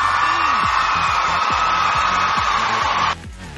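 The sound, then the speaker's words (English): A loud, dense burst of crowd cheering and applause for a remixer in the ISC, with scattered whoops and yells, sustained for about three seconds before cutting off abruptly. “We've got a remixer in the ISC, so give it an applause!”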